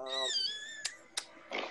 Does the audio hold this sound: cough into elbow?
no